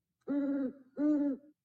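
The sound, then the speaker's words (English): A sound effect of an owl hooting at night: two steady, drawn-out hoots separated by a short pause, each one clear, with no voices or other sounds around them. “Oh, so are those owl sounds, Tony?”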